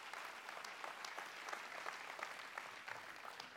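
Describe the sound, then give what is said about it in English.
Steady applause from a sizable crowd for the worship team, a hand clap of praise: dense overlapping hand claps at an even loudness throughout, with no voices standing out. “Give our worship team a hand clap of praise.”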